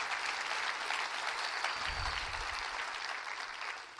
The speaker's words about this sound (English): Clap your hands. That's all right there.